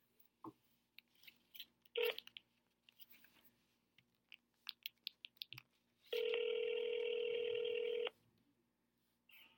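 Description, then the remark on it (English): A telephone being dialed to call a Taco Bell in Boston, Massachusetts: a quick, irregular series of short beeps and clicks, then a single loud, steady ringing tone that holds for about two seconds before cutting off. “Round one, ladies and gentlemen, we're going to be calling a Taco Bell in Boston, Massachusetts.”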